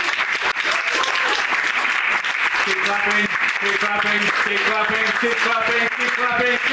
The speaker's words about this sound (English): Keep clapping.